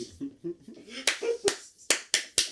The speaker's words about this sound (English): Do y'all still do that? The clapping? Yes. And it still works? Yes.